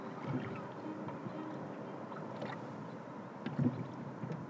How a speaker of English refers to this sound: Welcome back to the lake. It's a little windy today, but warm, and it's going to get even warmer.